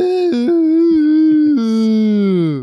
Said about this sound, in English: So, having nothing else to do, Wilfred the Wolf goes to howl out his sorrows to the moon. It's the weakest, crappiest howl it's like ever. The most impotent howl.